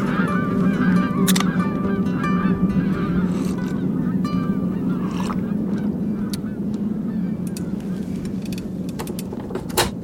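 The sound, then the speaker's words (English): A flock of geese honks continuously over a steady low rumble of wind high above the fields of Wisconsin, the overlapping calls loud, with a few sharp crackles of a CB radio scattered through. “We hear the wind, a flock of geese, and the crackle of a CB radio.”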